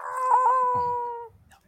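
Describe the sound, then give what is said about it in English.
A male cat lets out one long, drawn-out meow, fairly loud, holding steady for about a second before stopping, with no talking over it. “This is the cat.”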